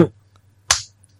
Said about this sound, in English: You slapping me? Yep.